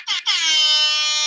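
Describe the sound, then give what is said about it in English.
A loud air horn blasts twice in quick succession, then holds one long, steady, brassy tone to the end, alone with no talking. “Whoa, you were so quick with the air horn.”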